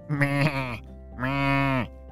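A goat bleats twice, loud, each call a drawn-out, wavering cry under a second long, separated by a brief pause, with no talking.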